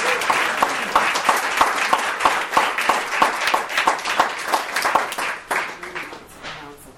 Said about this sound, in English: Can we please give a round of applause for these guys who have been good?